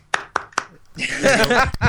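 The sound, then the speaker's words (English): Three sharp, evenly spaced hand claps ring out in quick succession, followed by a voice starting to talk. “You get one clap. Yeah, one clap.”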